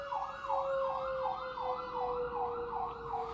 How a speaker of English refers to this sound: Let me pause for a minute. Here comes the fire truck.